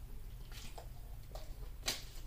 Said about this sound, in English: speaking of water, I'm trying to reach over here to grab one of my bottles. Okay, take a sip of this.